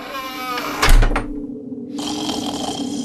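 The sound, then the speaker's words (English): A single loud, rasping snore erupts, then drops to a softer breathy rumble before a steady background hiss returns. No one speaks. “Week after week, my snoring was adding mortar to the Berlin Wall growing between us.”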